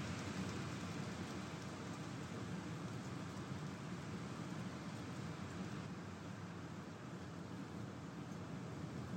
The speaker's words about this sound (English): Wind that is picking up strength as a storm front rolls in. It's going to bring several hours of soaking spring rain.